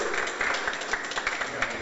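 A crowd applauding: dense, steady clapping with a crackly, hissing texture that holds at an even, moderate level for the whole short stretch, with no voices heard.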